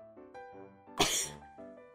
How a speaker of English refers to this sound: You're coughing again! Cough some more. This episode brought to you by allergies. Tiny little things poking your nose and throat.